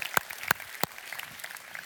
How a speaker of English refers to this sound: So I want y'all to just say, give yourself a hand of applause, round of applause. Come on.